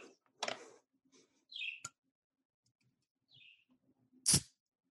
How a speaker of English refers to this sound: If you could just, if you could open the can just so we can hear that.